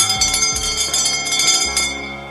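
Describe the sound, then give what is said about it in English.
A bell rings loudly, struck several times in quick succession, with bright metallic overtones that keep humming between strikes. No one speaks. “That bell means it's quitting time.”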